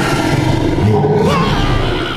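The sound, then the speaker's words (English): A huge, bright green furry puppy the size of a whole wall growls low and loud for about two seconds, a deep continuous snarl with a slight rising waver partway through and no voices over it. “Puppy! You're huge now! You're like the size of this whole wall!”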